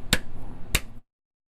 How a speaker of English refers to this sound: I think my unit of measure is going to be claps in a microphone.